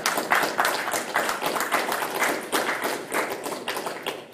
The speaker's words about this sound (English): We clap now, but I hope you clap when the pressure hits you.